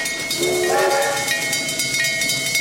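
A train rumbles along with a steady clatter while a loud, wavering steam whistle blows near the start, its tone sliding before fading back into the rolling rail noise.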